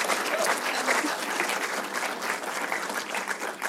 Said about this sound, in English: give you guys a big hand clap.